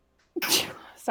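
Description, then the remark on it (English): A sharp sneeze bursts out loudly after a short quiet moment, followed right away by a quick spoken apology. “You are thrice blessed.”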